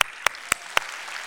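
Four sharp, evenly spaced hand claps in quick succession, each a crisp snap, followed by a low steady hiss with no one speaking.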